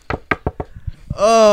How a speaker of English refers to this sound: You better knock on that wood right now.